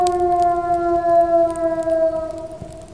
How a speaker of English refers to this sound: Out in the kennels, a sled dog started howling. It was a long, mournful sound.